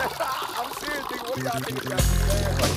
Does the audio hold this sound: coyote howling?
no